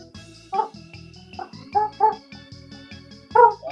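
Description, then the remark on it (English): A man's voice imitates a pigeon with a handful of short, throaty, warbling coos, uneven bursts spread across a few seconds, with no words in between. “Before we sign off, man, can you do a quick pigeon impression?”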